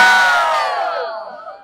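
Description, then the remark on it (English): A Texas crowd roars and cheers loudly for the War Room, a dense wash of many voices shouting together that starts at full strength and gradually tapers off over a second and a half. “By the way, can we hear a big Texas roar for the War Room?”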